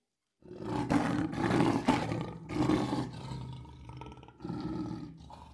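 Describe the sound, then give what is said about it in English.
A lion roars in a series of deep, rumbling bursts, each swelling and fading with short pauses between, loud with no voices around it. “The roar of the lion is a force of nature, a sound unparalleled by anything else in God's creation.”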